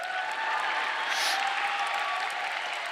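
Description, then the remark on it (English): An audience claps steadily, a dense wash of many hands patting at once, holding an even, moderate level for a few seconds with a faint murmur of voices mixed in. “You could clap if you want to.”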